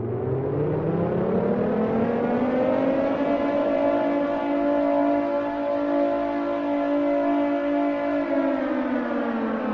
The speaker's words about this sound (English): Suddenly the night is pierced with the sound of an air raid siren.